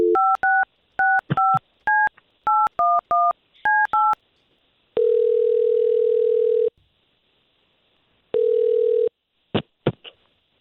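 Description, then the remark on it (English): A quick run of about eleven telephone keypad beeps as a phone number is dialed, followed by two long, steady line tones separated by a pause, then a few sharp clicks. Clear, with no voices. “Well, we're going to take her phone number that you gave us, and let's see if we can talk to her first, okay?”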